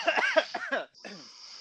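A quick run of four or five sharp, raspy coughing bursts, then a brief pause and a softer, trailing throaty sound, all fairly loud with no speech, played from a cough button that makes the recorded sound of people coughing.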